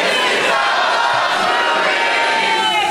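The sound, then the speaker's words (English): A comedy club audience in Portland, Oregon cheers loudly, a dense, steady roar of voices and whoops lasting the full few seconds, with no one speaking over it. “That's even, like, a bigger crowd would be less loud than that. You guys are awesome.”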